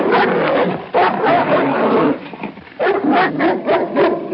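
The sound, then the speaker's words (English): A dog named Buck barks and growls loudly, a sustained run of harsh, snarling vocalizations with a brief dip before the aggressive barking picks up again. “That dog cost me a lot of money.”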